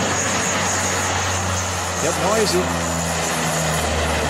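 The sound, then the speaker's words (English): A propeller airplane's engine drones steadily with a low, buzzing hum throughout as it takes off from a runway, while a person says a short word partway through. “And voila, you just got to be determined to get that thing in the air, and they do.”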